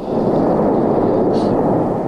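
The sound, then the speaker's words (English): A loud, continuous roar of a volcanic eruption, a dense rumbling wash of sound with no pauses, as gas bursts from magma blend into one sustained blast close by. “Well, the big booms that we're hearing are huge gas bubbles in the magma that are popping open.”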